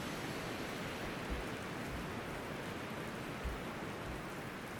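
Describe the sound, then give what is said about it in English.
Black steam locomotive number 62005, hauling burgundy rail carriages, hisses steadily as it comes to a stop, a dense, continuous rush of steam with a couple of soft low thumps underneath. No one speaks. “Aside from a flash of crimson red on the buffer stops, this black bull of a train hisses and sighs, coming to a rest.”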